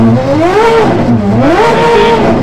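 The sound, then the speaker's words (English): A loud Ferrari FXX supercar engine revs hard while showboating for the crowds at the top paddock of a hill climb, its pitch sweeping up and down twice in quick succession over a steady roar, with no voices. “in a car that's nowhere near as quick or as extreme as this Ferrari FXX.”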